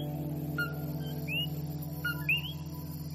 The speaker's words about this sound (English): You know, I know I'm in the diaspora when I notice the coquis, which is the tiny frogs that sing at night. When I notice them in the background, I know I'm in the diaspora.